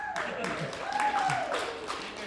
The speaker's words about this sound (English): A tepid applause for that. Yeah. We weren't sure how to feel.